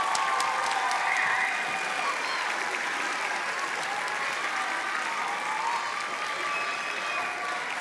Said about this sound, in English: This is his last winter concert, so please give Dr. Skomer a big round of applause.